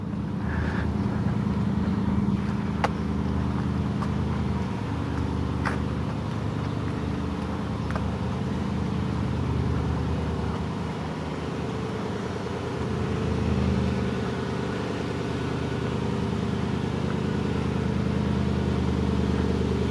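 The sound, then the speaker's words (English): A car engine idles steadily to charge its battery, a continuous low rumble with a few faint clicks and knocks over the top, holding a constant level throughout with no one talking. “I don't know if he's going to drive it around or just charge the battery.”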